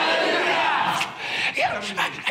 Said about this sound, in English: Oh, now your shouting is gone, eh? Shout hallelujah!